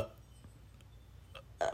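A couple of short, throaty burps close to the mic, a faint one early on and a louder, rougher belch near the end, with quiet low background hum between.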